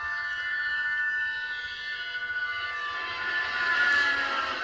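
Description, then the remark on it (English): A train rumbles past, its steady low clatter under a long, shrill horn or whistle that holds throughout and swells louder toward the end, with no voices. “And on that train that just passed by, it's a fun fact, that train that just passed by, if you look close enough, you can see”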